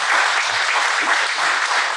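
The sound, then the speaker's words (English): Steady audience applause fills the whole moment, a dense wash of many hands clapping at once with an even, sustained loudness and no voices standing out. “Clap it up.”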